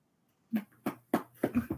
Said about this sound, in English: I'm our dog's butting in. The puppy is like, but I need love.